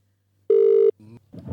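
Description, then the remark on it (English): A single loud, steady ringing tone from an outgoing phone call sounds for under half a second, then cuts off into brief clicks and muffled line noise as the call connects. “If he answers his phone.”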